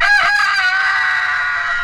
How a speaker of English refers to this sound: Yeah, morning time. I can smell those eggs frying and bacon cooking and toast burning and people wondering what a rooster's doing in downtown L.A.